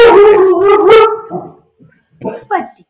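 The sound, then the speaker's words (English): A dog barks loudly, a drawn-out, almost howling series of yelps lasting over a second, followed by a short pause and then a person talking. “Those were barks in solidarity with the union.”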